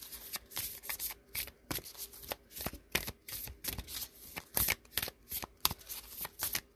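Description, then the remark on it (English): Shuffling of a very stiff deck of cards: a string of crisp, papery snaps and riffles coming in uneven bursts with short pauses between as the shuffling keeps stopping, no voices. “Oh yeah, the cards are very stiff, shuffling. You can hear I keep stopping.”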